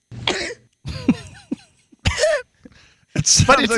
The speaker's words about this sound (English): That's not a sneeze. No, it's not. Are you coughing? And that's amplified. Well, that's because people are always confused. It's a combo. Do it again. Cough, sneeze.